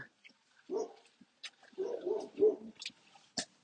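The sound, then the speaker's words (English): A dog lets out a few low, gruff woofs and grumbling barks in short uneven bursts with brief pauses between them. “Dog's wolfing at her.”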